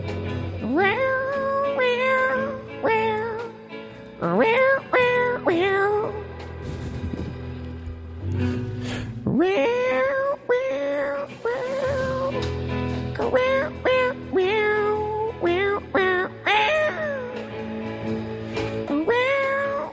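A cat on a phone line meows over and over in drawn-out, rising and falling yowls, almost like singing, loud, with short pauses between calls throughout.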